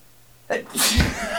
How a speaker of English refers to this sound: That was our first sneeze on Pacific POV.